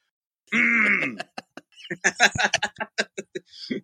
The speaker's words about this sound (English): Let me clear my throat real quick. Hold on, just one.